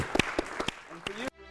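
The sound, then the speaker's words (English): A brief burst of audience applause, a final round for a speaker at the close of a talk, a handful of sharp, scattered claps over a faint voice, ending abruptly after about a second. “And can we give one final round of applause”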